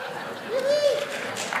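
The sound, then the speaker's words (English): Light, scattered, polite applause from a church audience at Cedar Mill Bible Church, brief and fairly subdued, with a voice briefly sounding over the patter of hands. “That was like a courtesy clap.”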